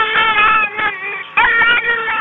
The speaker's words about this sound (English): That's not a real baby. I'll just take the battery out. Hold on, I'll what? Take a minute. Yeah. Hold on. That's it. Stop now. Why have you got two crying baby dolls?